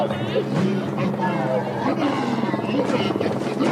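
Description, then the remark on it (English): A voice imitates the Blobbycopter, a roaring helicopter monster: a loud, continuous, rumbling growl with a choppy, throbbing texture, held steady for a few seconds. “He doesn't need editing at all to make him sound like a terrifying helicopter monster.”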